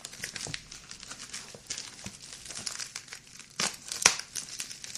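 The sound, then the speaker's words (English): A package being cut open with scissors and unwrapped, with steady crinkling and rustling of packaging, a few sharper tearing bursts, and one crisp snap near the end, no talking. “Jeez, maybe I should have had a knife or something on it.”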